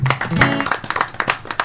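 A short burst of scattered applause from a small group, sharp irregular claps mixed with a voice or two cheering at the start, fairly loud and lasting under two seconds.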